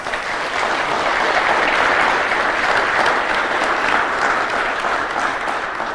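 Steady, sustained applause from an audience, a dense wash of many hands clapping at even loudness throughout, with no speech over it.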